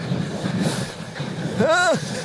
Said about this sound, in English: And a train going over just as we go as well. Yeah. It's like the BBC Radiophonic Workshop.